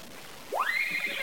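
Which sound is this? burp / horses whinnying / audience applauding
horses whinnying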